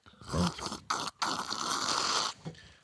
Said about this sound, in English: That's a slurp. That wasn't Coca-Cola. I don't know what it is about drinking beer in a podcast booth. Especially with the brewmaster who made it, yes.